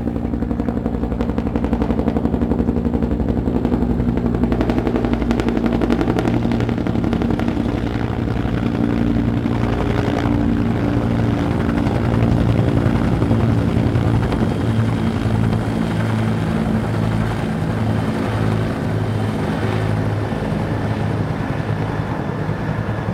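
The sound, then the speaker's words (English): Two dark green helicopters, one carrying John F. Kennedy to Galway City, thunder overhead in Ireland on the line from Dublin to Galway, with a steady rotor roar and heavy low-frequency chopping throughout, loud and continuous for the whole stretch with no voices. “I see two helicopters coming from the distance.”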